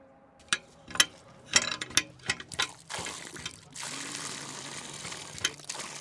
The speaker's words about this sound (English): An old woman draws water from a pump.